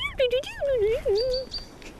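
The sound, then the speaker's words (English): A human voice imitates a robin's song with a wavering, warbling run of whistle-like notes. Faint, thin high chirps sound briefly in the background. “Robins, they go more like Morse code when they're doing a little tweet like that.”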